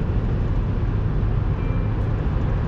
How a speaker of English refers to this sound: Jesus Christ, he's going fast. He's got a big truck, folks.